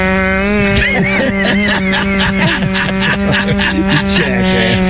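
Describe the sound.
A voice mimics the buzzing sound heard when on the road, a steady buzzing drone, holding a loud low-pitched hum for about five seconds with little pause, its tone wavering slightly as it goes.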